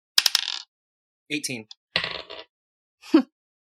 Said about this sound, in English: Oh, no. No, my dice fucking... I have to redo it one more time because my dice hit something.